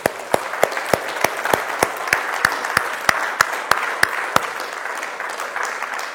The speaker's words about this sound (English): Amen. Amen. Let's give God a hand of praise.